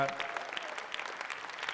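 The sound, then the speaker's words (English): An audience applauds the introduction of Matt Parker, a dense wash of many hands clapping steadily at an even, moderate level without pause or voices standing out. “I appreciate that precision in applauding.”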